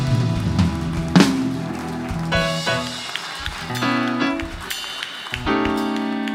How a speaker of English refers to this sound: Give the Lord a hand clap of praise and shout.